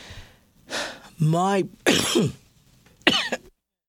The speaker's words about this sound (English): Sorry about that. I'm fighting my cough.